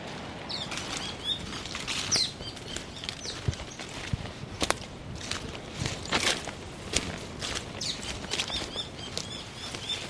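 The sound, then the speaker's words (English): A robin flies in, its wings beating in quick, soft flurries of rustling bursts against a faint windy outdoor background, along a forest track near a beach. No one speaks. “Hello, Robin. There's one in the tree above me.”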